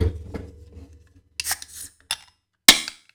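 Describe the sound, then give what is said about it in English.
A can of Beach House Schicki Micki beer, an IPA with melon, mandarina and Bavaria, is handled with low rustling, then cracks open with a sharp metallic pop and a short burst of hissing fizz, followed by a couple more crisp clicks. “So I'm going to go ahead and pop mine open.”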